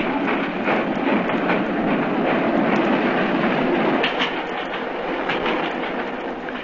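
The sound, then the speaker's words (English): A train on the British railway rolls steadily along the rails with a continuous rumble and faint rhythmic clickety-clack of wheels, loud, with no voices. “Stop the train!”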